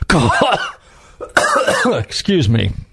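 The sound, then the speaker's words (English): Three loud, voiced coughing bursts, each a harsh throaty hack with a brief pause between, sounding like someone struggling to clear their throat. “Excuse me. While I... cough.”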